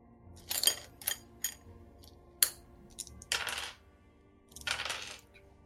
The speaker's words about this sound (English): It's cast at a fairly high level, so let me get the appropriate dice for this.